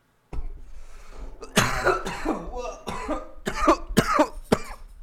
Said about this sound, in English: I didn't mean to cough in the mic like that. Sorry, folks.